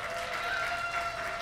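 A crowd applauds to show it agrees that popcorn is the best, in a steady, dense patter of clapping that holds at an even loudness throughout, with no voices rising above it.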